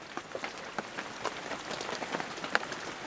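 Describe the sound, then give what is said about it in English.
Steady rain patters down, with scattered individual drops tapping over a soft continuous wash; no voices, just the uneven pitter-patter of a persistent shower. “The rain didn't let up.”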